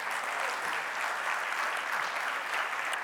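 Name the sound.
applause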